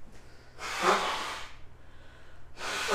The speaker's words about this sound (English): going to blow her nose. It's very aggressive.